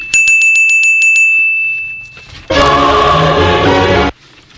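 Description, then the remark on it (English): A bright bell rings loudly in a quick burst of about eight strikes, its tone lingering before fading. A harsh, loud burst of noise follows for over a second. “So now I bet you're going to tell me that angels don't get their wings every time a bell rings.”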